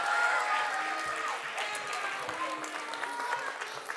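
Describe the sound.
An audience applauds steadily for several seconds, a dense wash of many hands clapping at an even level, with some voices from the crowd mixed in.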